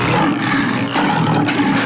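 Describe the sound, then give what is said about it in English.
A loud lion roar sound effect fills the whole stretch, a sustained rough growling bellow with slight surges in intensity and no talking. “Didgeridoo, lion, elephant, sheep.”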